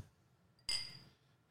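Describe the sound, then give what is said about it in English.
A single bright clink of glasses touching in a toast, sharp at first and then ringing out briefly before fading into quiet. “Should we cheers?”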